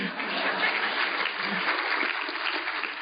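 A crowd applauds steadily for a few seconds, a dense, even wash of many hands clapping at a fairly loud, constant level with no pauses.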